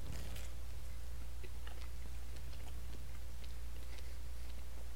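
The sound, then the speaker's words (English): Crunchy chewing of a pizza slice with a crunchy crust, with repeated crisp bites and crackles over a steady low hum, no talking. “Honestly... I thought the dough was going to be a little soft. Mm-hmm. It's got some crunch.”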